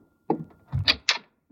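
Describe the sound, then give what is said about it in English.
A door is opened for a visitor: a dull thump, then a low rumble and sharp latch clicks in quick succession, with no one speaking. “I'll see who's at the door.”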